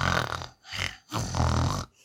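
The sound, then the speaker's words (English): A person imitates loud snoring with their voice, giving three rough, rattling snorts in a steady rhythm, close and prominent with short pauses between. “But also, Puddin was sitting between us the whole time and, like, snoring really loud.”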